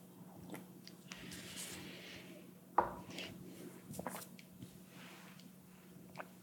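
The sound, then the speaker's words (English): Quiet slurping and wet mouth sounds as someone sips hot coffee from a cup, with a sharp cup clink partway through and a low steady hum in the background. No one speaks. “I'm going to take a sip of this coffee while you consider those questions.”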